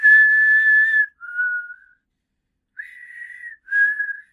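A person whistles four clear, steady notes: a long held tone, a shorter lower one, a brief pause, then two more sustained notes. No one speaks.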